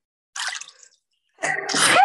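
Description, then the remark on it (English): A sneeze heard as two loud, breathy bursts separated by a brief silence, with no talking around it. “Bless you.”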